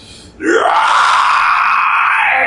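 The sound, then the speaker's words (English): A voice imitates a monster's shriek: a rising wail that swells at once to a loud, sustained, piercing cry, held steady for about two seconds without any other talk. “He lets out this shriek that just echoes through the forest.”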